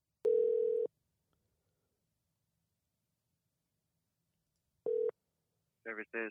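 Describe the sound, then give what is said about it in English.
A steady electronic phone tone sounds for about half a second as a call is placed back, then long silence, then a brief second burst of the same tone, followed by a voice starting to speak. “Okay, so we are calling back now.”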